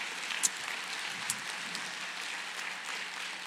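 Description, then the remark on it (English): A church audience claps steadily for a family, a dense wash of many hands with a few sharper individual claps popping out, sustained evenly for a few seconds with no voices. “Can we give this family a round of applause?”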